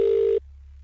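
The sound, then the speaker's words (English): A single steady ringback tone from an outgoing phone call, loud and clear, cuts off after a brief burst, leaving a quiet line hum. No one speaks. “We do the five rings.”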